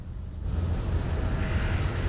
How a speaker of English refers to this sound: Well, would you look at that? It's a helicopter. Now, I bet you are all wondering how something so small can fly.